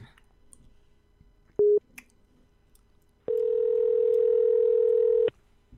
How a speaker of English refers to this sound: If I just hit call phone, it will dial.